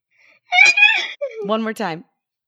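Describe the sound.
A person imitates a horse's neigh with their voice: a high, quavering whinny that slides downward, followed by a lower, rougher nickering burst, all loud and alone without other talk.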